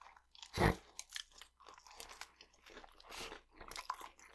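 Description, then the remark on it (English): A loud crunch as someone bites into a sub sandwich with a chip stuck in the middle, followed by a few seconds of irregular, crackly chewing with no talking. “There's that crunch in the middle.”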